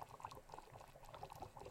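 Water bubbling and churning steadily as it lifts from the bottom chamber into the top chamber of a siphon coffee brewer, a dense, continuous gurgle of small bubbles with no talking.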